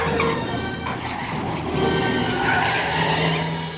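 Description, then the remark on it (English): A car skids and flips over in a stunt, with a loud, continuous tire squeal and engine roar sustained for several seconds; no voices are heard. “I take it the flip was done in slow-mo because the car seemed to drift through the air.”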